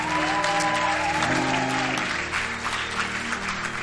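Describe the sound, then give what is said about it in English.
An audience at a church service applauds steadily for people going back to their seats, a dense wash of many hands clapping at once, fairly loud and sustained throughout, with a faint sustained musical tone and murmuring underneath. “You may go back to your seats. God bless you. Clap for them.”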